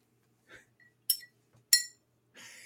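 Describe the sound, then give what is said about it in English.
Two bright, ringing clinks of glasses tapped together, fairly loud, about half a second apart, with faint rustles before and a soft breathy hiss after. “I try to make it sound as if we had clinked glasses.”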